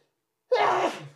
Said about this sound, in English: The wettest sneezes.